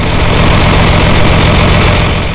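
A diesel tractor engine idles steadily and loudly up close, a constant low rumble with a fast chugging pulse and no other sounds.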